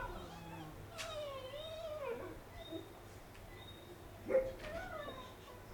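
A dog cries outside at night, a few faint, high, wavering whimpers drifting over a low steady background hum, with one slightly louder yelp near the end.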